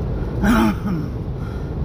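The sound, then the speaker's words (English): A single harsh cough from someone who has picked up a cough in cold weather, with a rough, breathy burst, followed by a softer second catch, over a low steady background rumble. “Picked up a cough here.”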